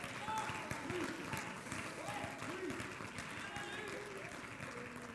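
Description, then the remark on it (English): An audience claps steadily for about five seconds, a dense, even wash of many hands with murmuring voices mixed underneath, holding at a fairly constant loudness throughout. “Don't start clapping for me.”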